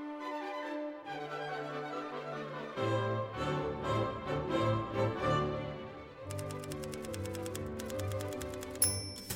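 machine, typewriter typing

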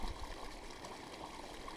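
nature, flowing stream water

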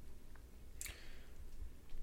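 food or drink, sipping beer

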